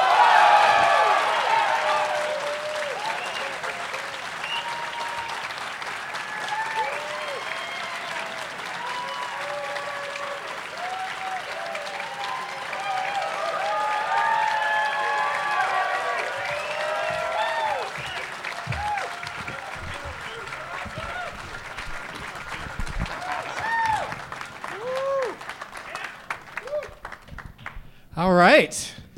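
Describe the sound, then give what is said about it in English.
A studio audience applauds steadily for nearly half a minute to welcome guests, dense clapping mixed with scattered whoops and cheers, holding a strong level before tapering off at the end. “Please give a big warm welcome to Emma Arnold, Russell Peters, and Geoff Tate.”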